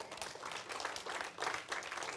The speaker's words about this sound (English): Let's stand for closing prayer. Let's give the Lord applause.